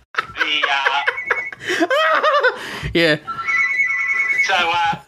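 A landline telephone rings with a steady electronic warble, clear, as people laugh and chuckle around it.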